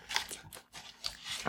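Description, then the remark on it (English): Chewing of a Raindrops gummy hot dog candy: a run of soft, sticky bites and squishy mouth sounds in quick irregular bursts, with no one talking. “Raindrops gummy hot dog. Let's eat this and end the episode with it.”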